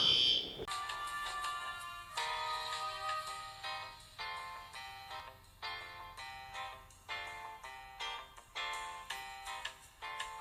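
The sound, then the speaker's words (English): An apartment building fire alarm test blares in loud, repeating electronic pulses with a harsh, tonal buzz, sounding continuously with no one talking. “No, it's an alarm.”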